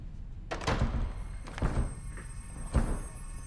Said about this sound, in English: you broke the door. This isn't funny!